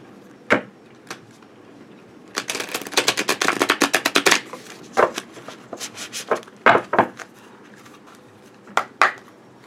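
A deck of Uncommon Tarot reading cards being shuffled, with a rapid burst of crisp riffling clicks in the middle and a few scattered taps and flicks before and after, no talking.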